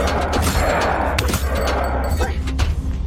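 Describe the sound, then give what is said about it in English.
Busy combat sounds from a dungeon video game: repeated sharp bangs, impacts and slashing hits in quick succession, loud and dense over a rumbling background, with vocal grunts mixed in. “Just lots of banging onto stuff and cutting things open.”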